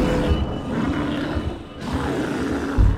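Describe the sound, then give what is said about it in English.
An angry bear, rearing up on its hind legs after being stabbed, roars loudly: a deep, rough, guttural growl sustained for about three seconds with grunting surges, including a heavier burst near the end. “It is mad. It is roaring.”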